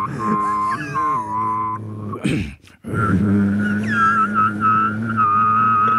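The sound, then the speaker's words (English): A voice trying to produce two to three tones at once holds a low, buzzing drone while a clear whistle-like overtone rises and slides above it, with two tones sounding at once. A short breathy break interrupts it midway before the drone resumes. “I can just do, like, try to do 2 to 3 tones at once. Three sounds at the same time.”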